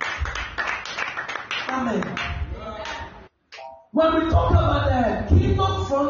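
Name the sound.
audience clapping hands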